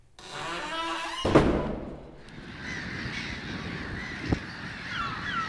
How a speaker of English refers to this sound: Holy mollusk! There must be hundreds of birds.